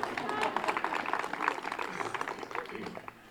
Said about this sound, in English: How often does Maya get a round of applause in this world? From yogis, anyway, it doesn't happen very often.